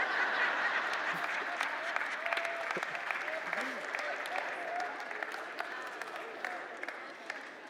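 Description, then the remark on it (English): A crowd claps steadily and loudly throughout, with a few short whistles rising above the applause and some scattered voices mixed in. “A whistle? Whew, don't even get us started.”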